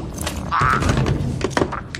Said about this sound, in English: What's that? Just a frog. It's supposed to be sedated.